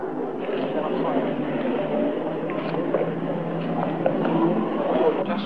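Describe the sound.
Cars drive up and pull in at a spot for going up to Cradle Hill, a steady engine rumble filling the scene, with indistinct voices murmuring underneath.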